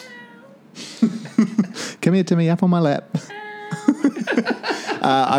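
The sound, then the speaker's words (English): A 7-year-old female rescue cat wearing a bell meows, a short tonal cry that comes once or twice while a person speaks softly and coaxingly over it. “I just got a rescue cat.”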